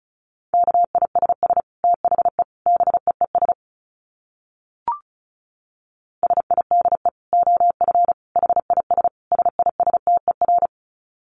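Rapid Morse code at 35 words per minute: a single steady mid-pitched tone keyed in quick dits and dahs, sent in two bursts separated by a pause with one brief click.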